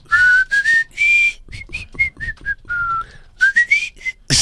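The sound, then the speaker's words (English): A person whistles a lively tune, with clear bright notes in short phrases that rise and dip, some held briefly, others quick and choppy, ending on a sharp burst. “It's a whistling event.”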